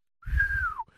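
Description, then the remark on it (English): A single sustained whistle from a person, held steady and then sliding downward at the end, loud, with low rumbling background noise underneath. “He was like, I heard that whistle.”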